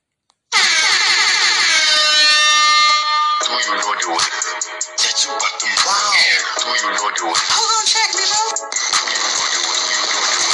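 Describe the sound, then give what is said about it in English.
A loud, blaring air-horn style alarm blasts continuously with rich harmonic tones, shifting into a chaotic, pulsing siren-like wail that fills the whole stretch without pause. “Ha, let me sound that alarm one time for the one time.”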